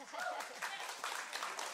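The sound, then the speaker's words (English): An audience applauds in a dense, steady wash of clapping that holds at an even loudness throughout, with crowd voices and a few brief whoops mixed into the noise. “He got two rounds of applause.”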